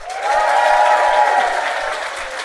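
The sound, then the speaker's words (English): A crowd claps steadily, a dense wash of many hands applauding at once, loud and sustained throughout before tapering slightly at the end. “Give me a round of applause if you've ever heard our podcast Do Go On before.”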